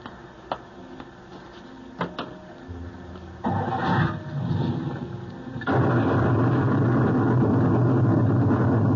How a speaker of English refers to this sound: Just as we left the coach, sir, a bolt of lightning struck. Lucky we weren't all blasted into the next world.